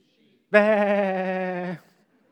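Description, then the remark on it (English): A person imitates a sheep with one long, wavering "baa" bleat as the punchline of an "interrupting sheep" knock-knock joke, loud, lasting just over a second before cutting off into silence. “Interrupting sheep.”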